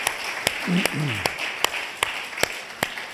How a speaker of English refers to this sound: Come on, give the Lord a clap on.